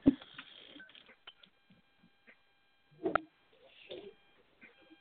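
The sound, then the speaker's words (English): A phone line cutting in and out, with crackly bursts, sharp clicks and faint steady electronic tones between long near-silent gaps, thin and tinny as if heard through a handset. “I think his phone went out again.”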